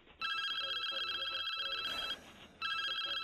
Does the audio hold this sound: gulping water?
no